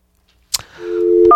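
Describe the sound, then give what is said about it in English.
Telephone dialing tones: a sharp click, then a steady low electronic hum, and a brighter two-pitch beep starting just at the end. No one speaks. “Oh, it sounds like somebody dialing.”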